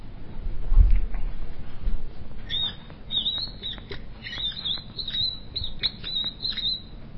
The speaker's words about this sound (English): Sorry about the squeak.